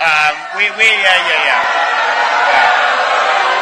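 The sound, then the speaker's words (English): A dense crowd of voices shouts and yells together in a sustained, loud roar, shouting down a heckler, with raised individual cries rising above the clamor near the start. “So the crowd shouting them down, as they should.”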